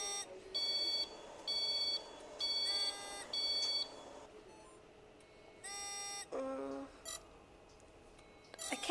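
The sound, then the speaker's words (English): Repeated electronic alarm beeps from machines on a hospital ward sound in a steady rhythm of short tonal bursts, joined by a few different-pitched tones from other monitors, against a low background hum. “If I do a run of days, I tend to occasionally, when I'm away from the environment, you tend to hear the alarms, you know, in your head, because especially if you've had a really tough day and the alarms on the machines have been going off a lot”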